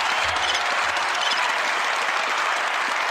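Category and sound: crowd, long applause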